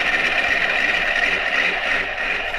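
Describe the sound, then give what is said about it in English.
A Mazda four-rotor rotary engine runs with a steady, loud, raspy buzz, its harsh mid-high whine holding constant and slightly rough-edged throughout, with no voices over it. “Is that why it sounds broken? Four rotor.”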